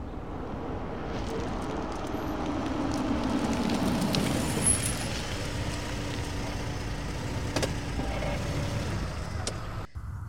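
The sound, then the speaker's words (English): A car's engine rumbles steadily from inside the vehicle, then its pitch drops as it pulls over and eases to a stop by a coffee bar in Kyiv, leaving a lower idling hum with road noise. “Pull over here.”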